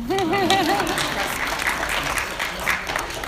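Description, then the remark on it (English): A steady wash of audience applause, dense and continuous, with a voice briefly speaking over the first second before the clapping carries on alone at a fairly loud level. “You can clap.”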